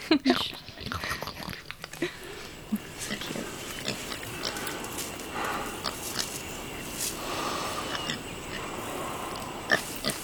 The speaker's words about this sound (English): I love that like scene where the pig gets in her little bed. Yeah. Her little snuffles. Yeah.